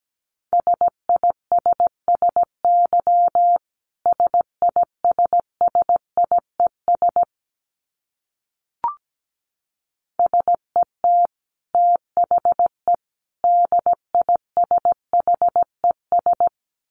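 Morse code at 17 words per minute, sent as a single steady mid-pitched tone keyed into brisk dots and dashes, with a pause midway broken by one brief click before the keying resumes. No voices.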